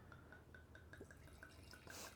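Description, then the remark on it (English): Wine glugs steadily into a glass in a heavy pour, a quick run of about ten evenly spaced gurgling pulses over a low background hum, moderately loud with no talking. “Glug, glug, glug. I know. Ooh. Heavy pour.”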